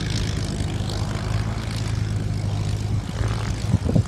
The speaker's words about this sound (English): Yeah, here's the Spitfire taxiing back in.